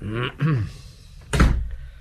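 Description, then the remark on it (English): A short burst of voice, then after a pause a single loud door bang as a woman bangs the door shut, with a deep thud and a brief rattling decay. “She's put out. She banged the door.”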